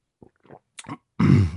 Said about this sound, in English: excuse me, I got a little cough here.